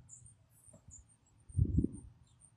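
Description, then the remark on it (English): An owl hoots once in Northwest Ohio, a soft low call rising briefly over a quiet outdoor background of faint, high-pitched chirping. “There's an owl somewhere. I can hear them.”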